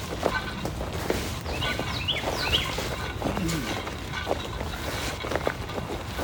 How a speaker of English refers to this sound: and then there's just birds chirping.